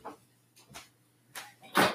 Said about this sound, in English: I'm gonna open the door. One sec.